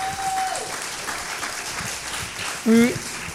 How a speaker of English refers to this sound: Can we give our panelists a hand clap?